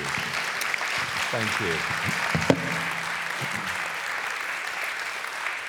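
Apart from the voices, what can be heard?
audience applause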